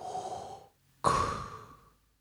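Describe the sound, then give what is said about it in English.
A voice imitates Darth Vader's heavy, mechanical respirator breathing: a hissing, resonant inhale, a brief pause, then a louder, sharply starting exhale. It is alone, with no talking. “And the breathing of Darth Vader just gets a little bit louder as you're getting closer and closer.”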